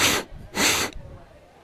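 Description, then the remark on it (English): A voice imitates a creature sniffing as it leans over, with two sharp, breathy inhalations, the second longer than the first, fairly loud, followed by quiet. “Kind of leans over, like, sniffing, like...”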